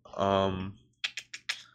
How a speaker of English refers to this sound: Wait, let me just get it up. You can hear my typing. Sorry about that.